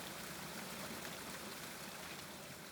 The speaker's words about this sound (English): After the spilled oil is extracted, the remaining water is reintroduced into Newtown Creek through this pipe, becoming the cleanest source of water entering the creek. Crystal clean water rushes through riprap onto the waterway below.